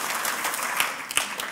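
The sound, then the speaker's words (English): A crowd gives the Lord a clap offering in a morning church service, clapping together in a dense, steady wash of applause, with a couple of sharper individual claps standing out briefly above the sustained patter. “Come on, give the Lord a clap offering this morning.”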